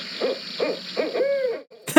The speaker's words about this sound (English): That was it. Yeah, that's the barred owl. They sound kind of like, I mean, it's like I've heard owls before, right? I feel like when they're in movies, they're more dramatic or something.